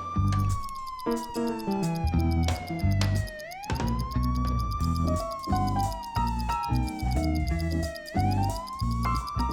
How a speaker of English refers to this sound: One night, a bunch of thieves were stealing boxes with electronics from a warehouse and carrying them to their van when they heard a police car siren.